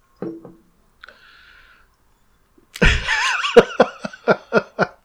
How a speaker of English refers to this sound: Why did it make me cough and shit? Damn, dude. It's Rona. Just kidding. Dude, it burns so good.